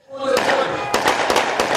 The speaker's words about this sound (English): A shootout on a Rio subway, and Olympic tourists running for their lives. What? This is just a training exercise.